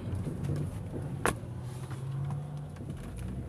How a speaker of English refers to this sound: This car just came out in front of me.